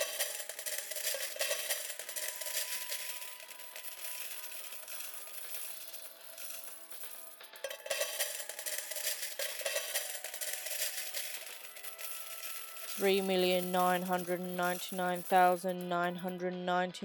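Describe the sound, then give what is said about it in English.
A steady stream of small 1p coins clinks and jingles as a pile is counted out to pay for a hat, continuing for several seconds before a voice begins speaking over the last of it. “Luckily, in her back pocket, Isla was carrying £4 million in 1p coins.”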